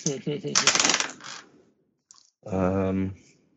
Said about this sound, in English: I rolled a 22 of my bureaucracy. Okay. That's right. Critical.